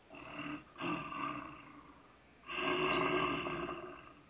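A bear roars loudly, a deep rasping bellow that swells twice with a brief lull between the long bursts; no one speaks.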